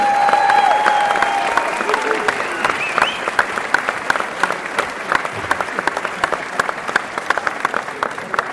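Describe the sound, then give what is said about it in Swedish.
Sustained applause from a large audience at the Årets kock 2015 cooking awards ceremony, welcoming the hosts; dense clapping that fades slightly over several seconds, with a faint tonal hum early on and no talking. “Låt oss ge en varm applåd för våra konferensier.”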